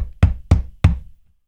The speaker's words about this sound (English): Now, let's say the police knock on your door.